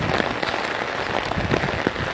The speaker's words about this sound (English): It's raining a lot.